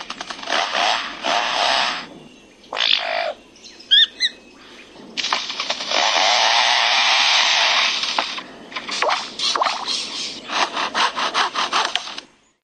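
A bird mimics foresters' chainsaws: harsh, rasping buzzes, a long sustained revving whine mid-clip, then rapid stuttering bursts, with a few brief chirps in between. Loud, with no talking.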